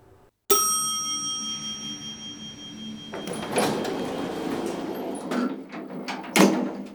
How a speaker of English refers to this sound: As soon as the elevator doors closed firmly behind her, Ochako realized she had made a mistake.